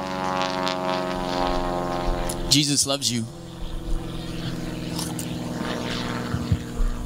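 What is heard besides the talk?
airplane passing overhead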